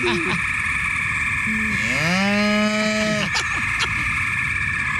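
A single cow moos once, a long, low, drawn-out call lasting about two seconds that rises slightly in pitch, over a steady high-pitched whine in the background.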